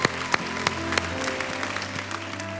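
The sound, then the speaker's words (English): A round of applause from a crowd celebrating people as they head out into their future, steady dense clapping with a few sharper claps standing out, held at a moderate level for a couple of seconds with a faint low hum underneath. “Well, I'm going to ask you to have one more round of applause as they head out into their future.”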